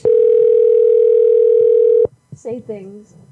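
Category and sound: signal or alarm, phone call ringing tone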